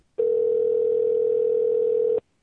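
A steady telephone dial tone hums at one unchanging mid-low pitch for about two seconds as a phone call is placed, then cuts off abruptly, with no talking over it.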